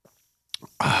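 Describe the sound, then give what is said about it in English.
A short, sharp slurp of someone sipping tonic water flavored with a strawberry lemonade squirt, a couple of soft swallowing sounds, then an abrupt loud, breathy vocal sound. “Before I go any further, let me take a sip of this fine tonic water.”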